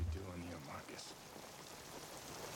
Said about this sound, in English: because the rain machines just drowned out any dialogue we had. And they were helping out the existing rain that was happening on that day. As you can see by the very large umbrellas that both cast members are holding, because there is a lot of rain.